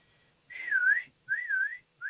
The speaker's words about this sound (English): You whistle because, you know they'll never hear you, but you do it anyway. Okay. And you go like that.